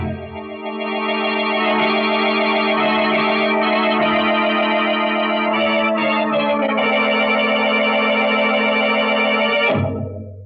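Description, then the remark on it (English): A prison escape alarm siren, sounding after the prisoner Briggs has broken out, blares as one loud, steady, buzzy tone for about ten seconds, with a slight shift in timbre partway through, then cuts off abruptly. No one speaks. “But instead of listening to that alarm, you should have paid more attention to that wife of yours.”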